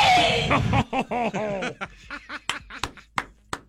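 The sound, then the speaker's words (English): A woman on a packed New York City subway train lets out a loud, strained, wailing yell, her voice rising and falling as she shouts that she is going to be late, then breaks into a series of short, sharp gasping bursts. “She is just yelling, blood-curdling yell, I'm gonna be late.”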